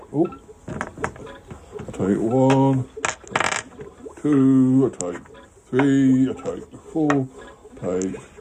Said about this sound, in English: I'll take 1, 2, 3, 4, 5, 6, and I roll the last four dice, and I've got.